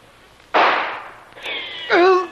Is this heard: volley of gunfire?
yes